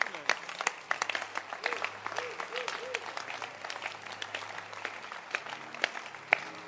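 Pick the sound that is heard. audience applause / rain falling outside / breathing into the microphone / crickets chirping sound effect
audience applause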